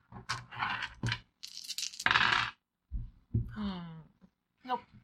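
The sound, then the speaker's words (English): Three dice for a brawn roll in a tabletop game rattle and clatter in a few quick, noisy bursts, then go quiet, followed by a short vocal sound. “Then I need you to make a brawn roll with 3 dice.”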